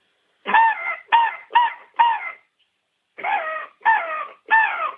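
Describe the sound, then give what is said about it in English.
A hand-blown ARO crow call, used as a locator call for turkey hunting with a hand cupped over its end, imitates harsh, raspy caws: four quick blasts, a short pause, then three more, loud and nasal, with no talking. “I'll cut my hand on the end of the ARO crow call and check out how realistic this sounds.”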